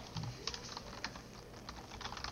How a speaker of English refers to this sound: This is great audio, me just typing.